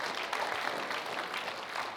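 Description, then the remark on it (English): A crowd claps together in steady, dense applause to welcome people watching online. It holds an even volume for the whole stretch, with no voices standing out above it. “Would you give them a hand clap?”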